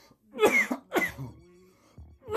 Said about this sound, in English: Ooh, coughing up a lung over here.